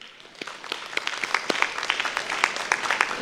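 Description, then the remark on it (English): An audience, including those at South Campus, gives each other a clap offering, a dense patter of many hands that builds slightly and holds steady throughout, with sharp individual claps standing out from the crowd. “Give each other a big clap offering, everybody.”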